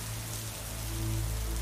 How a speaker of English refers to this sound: The first night there, I drifted off to the steady patter of rain, feeling quite snug.